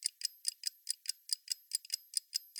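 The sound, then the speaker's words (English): A pocket watch ticks steadily on its own, about a dozen quick, bright, high-pitched clicks in a fast even rhythm, quiet and crisp with no voices. “You didn't bring a pocket watch with you in here, I hope.”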